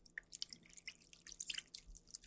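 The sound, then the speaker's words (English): Two or three ice cubes clink and tumble into a martini glass as a little water splashes in to chill the glass, a quick run of bright little clatters and trickles with no talking. “So just take 2 or 3 cubes of ice and a little bit of water, put it into your martini glass.”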